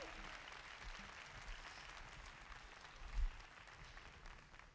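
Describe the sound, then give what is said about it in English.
An audience claps steadily for the teams being honored, a dense wash of many hands with no clear individual beats, holding an even level throughout with a brief swell near the end. “One more round of applause for our teams here.”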